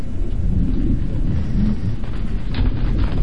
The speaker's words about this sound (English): Then it began to rain.